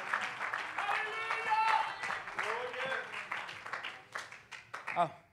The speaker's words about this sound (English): Clap your hands and love the Lord tonight. Come on, clap your hands and love the Lord tonight. Come on, praise Him, praise Him.